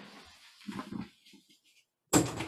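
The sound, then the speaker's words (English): A dog barks in a couple of short, muffled yaps, then after a brief quiet gap a much louder, harsh burst cuts in at the end. No one speaks. “I'm recording my podcast, so he was barking.”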